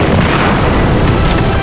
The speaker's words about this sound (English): then hit the deck as one of the big cannons went off mere feet from his head as the skimmer pulled even to the ship.